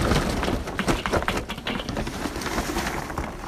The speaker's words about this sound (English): Today I'll be using the Weber kettle. And we need to add charcoal. And we're going to do that on one side of the kettle.